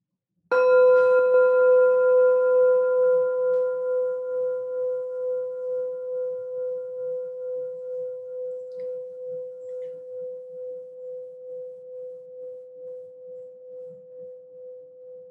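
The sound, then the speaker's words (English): A single meditation bell is struck once to begin a mindfulness of breathing practice, ringing out with a clear, sustained tone that slowly fades with a gentle wavering shimmer over about fifteen seconds, heard alone without any voices. “And we'll begin and end the practice with the sound of a bell.”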